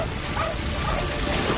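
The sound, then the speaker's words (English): The dog Bolt barks and yips sharply and loudly in the trailer for Disney's 2008 film Bolt, over a dense, noisy background with voices mixed in, all packed into a brief, busy moment. “Get that dog!”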